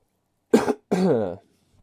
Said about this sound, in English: Man, every time I get on the fucking mic, I just start coughing around and burping and fucking it's always immediately.